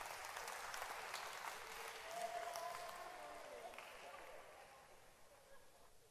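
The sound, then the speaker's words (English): A crowd applauding, many hands clapping in a dense, steady patter that stays fairly loud throughout and eases off slightly toward the end, with faint voices mixed in. “Clap your hands for him.”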